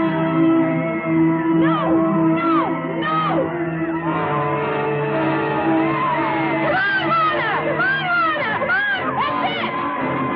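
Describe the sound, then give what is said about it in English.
A crowd of women cheers and yells encouragement, many overlapping high voices whooping and shouting continuously and loudly throughout, with rising and falling cries swelling near the end. “And just yelling random things of encouragement.”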